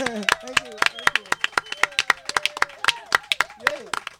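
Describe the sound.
A small crowd at a live event gives a round of applause to thank a speaker, clapping in a quick, uneven patter of sharp, crisp hand claps that keeps going for several seconds, with voices cheering and chattering underneath.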